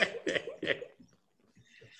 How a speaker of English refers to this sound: That cough means way more to me than it means to you, right? So I mean, I'm protective at this point, not even based on race and stereotype. You cough around me at this point and you got to go out.